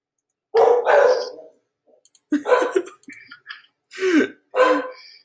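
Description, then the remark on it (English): Two dogs bark loudly, a burst of about six rough barks in an uneven rhythm with short pauses between them, and no talking, interrupting a recording. “Okay, I think are your dogs finished barking?”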